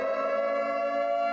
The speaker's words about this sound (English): What's that? What's that? Doth my ears fucking lie to me? Is that what I think it is? Is that an air raid siren I hear in the distance?